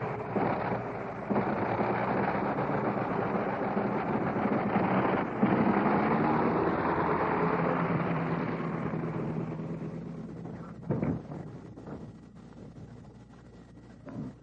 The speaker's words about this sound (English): And there he taxis away. Did you hear the sound of that plane going off? That was the famous Liberty engine, 425 horses, and this version, the one that you heard, was in and installed in a DH-4 U.S. mail plane that did not see service in World War I